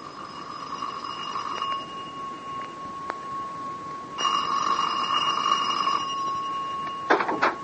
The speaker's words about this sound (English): Well, just over an hour ago, I was in the study when the front doorbell rang." "Mm-hmm." "I don't think Charlie could have heard it because the bell continued to ring for some considerable time.